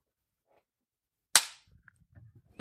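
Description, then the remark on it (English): A single sharp hand clap, made to sync a camera recording after a hiccup, cracks out loud and bright, decaying quickly, followed by faint low rustling and a soft second tap near the end. “A little bit of a hiccup there, just clap in case.”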